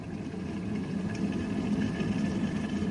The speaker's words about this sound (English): Put them in my cup and I'll set the kettle boiling.